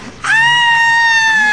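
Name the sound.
scream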